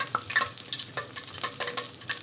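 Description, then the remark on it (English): Beignets fry in bubbling oil and change colour as they cook, giving a steady hiss broken by frequent sharp crackles and pops at an uneven rhythm, with no voices. “This is a better, like, the oil now, we're in a place that I feel good about it. It's, like, bubbling enough, but not too much.”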